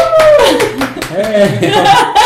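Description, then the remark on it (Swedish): A brief burst of spontaneous applause welcoming a first guest, with a few irregular claps layered under cheerful voices that laugh and exclaim over the clapping. “Spontana applåder.”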